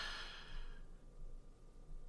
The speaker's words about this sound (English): Meditating works, right? Listen to your breathing. In, out, in, out.